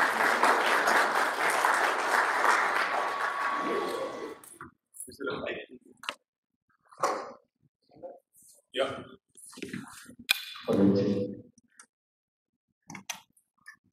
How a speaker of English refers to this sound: I would like to welcome sir on the stage. Please give him a huge round of applause.